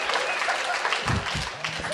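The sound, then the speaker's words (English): An audience applauds with dense, steady clapping that fills the whole two seconds at an even loudness. A few low voices or shouts rise briefly beneath it partway through. “Why aren't you clapping?”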